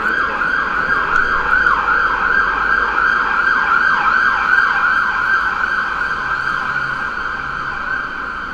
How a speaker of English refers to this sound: Ambulance right there.